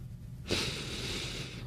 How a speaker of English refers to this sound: Sound like you got a little sniffles there. Mm-mm, I'm trying to think. That sound like a booger was rattling in your nose. A little phlegmy. Got a little phlegmation.